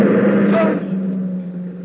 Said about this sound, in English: Feet. I gotta rest a bit. A car. Hey, you going to town?